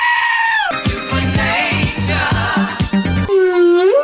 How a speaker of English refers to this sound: I always think that last bit's you. It's the sneezing pandas. No, that's a whale.